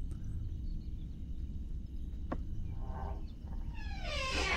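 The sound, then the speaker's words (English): A door opens with a sharp click midway, then a rising, swelling whoosh near the end, all over a steady low rumble of background noise. “I like the door. They got good doors on Bajor.”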